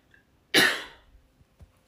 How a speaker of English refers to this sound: Hold on, y'all, I gotta cough again, and I'm trying not to cough in your ear.